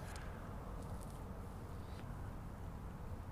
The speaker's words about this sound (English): I'm going to leave the sounds of this little ephemeral wetland.